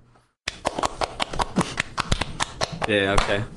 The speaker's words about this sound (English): Yeah, okay. Slow cap. Oh, you're cool. Yeah, you're slow clapping. You're cool. Yeah, you're just that rebellious guy. You just got slow clap.